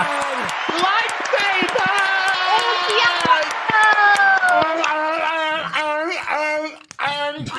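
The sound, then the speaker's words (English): Sharp, irregular hand claps crack through sustained excited shouting and whooping voices, the claps scattered across the whole stretch rather than in a steady rhythm. “I haven't clapped that hard since I watched the Acolyte trailer.”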